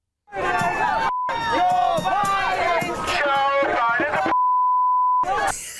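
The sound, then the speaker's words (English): A loud crowd of anti-vax protesters chants and shouts together, cut twice by a flat, steady censor bleep added by mainstream media: a brief one early on, then a longer tone lasting about a second near the end. “Yeah, that one, as you can probably guess, was from mainstream media because they had to beep it.”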